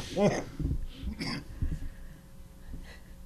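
A man coughs in several harsh, uneven bursts, with strained, wheezy breaths and throaty rasps between them, fairly loud against a low background.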